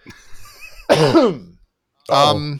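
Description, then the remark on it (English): A single loud, throaty cough, with a short burst of voice after a brief pause and faint murmuring before it. “It was a single cough that happens.”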